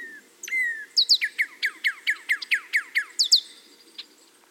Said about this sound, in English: And, of course, the bill is used as an instrument to modify a bird's vocal sounds. The bill can modulate a bird's songs and calls. Just watch a singing bird and you'll see how it opens and closes its bill to shape the sound coming out of its mouth.